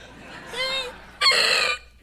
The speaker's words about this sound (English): The owl's back. The owl left Sunday night. It was crazy.